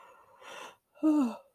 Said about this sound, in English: I think I yawned.